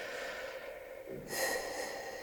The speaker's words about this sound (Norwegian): Du sitter godt ned, så trekker du inn luft gjennom nesen, dypt inn, og du puster ut gjennom munnen.